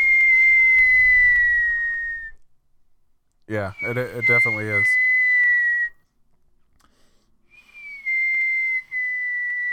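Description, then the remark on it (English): Someone whistles to imitate fireworks, holding long, steady high notes that droop slightly in pitch. There are three stretches, and a voice speaks briefly over the middle one. “Trying to do fireworks noises.”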